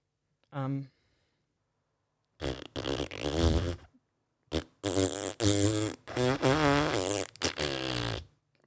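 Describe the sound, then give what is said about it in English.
A brief, close fart, then after a pause a long, loud, sputtering run of flatulence broken by short gaps, prominent and right up near the microphone. “Did you just fart?”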